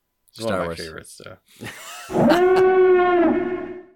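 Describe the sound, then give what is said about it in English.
The Death Star security alarm sound effect from Star Wars: a couple of short warbling, voice-like bursts, then a loud, steady, buzzy tone held at one low-mid pitch for nearly two seconds. “Oh, that's the security alarm.”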